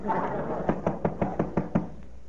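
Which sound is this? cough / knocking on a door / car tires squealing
knocking on a door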